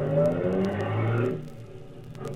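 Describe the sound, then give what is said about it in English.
A car carrying a load drives along, its engine giving a steady low drone with a rising revving tone that eases off after about a second into a quieter, rumbling hum. No one speaks. “I don't like driving around with anything hot like this.”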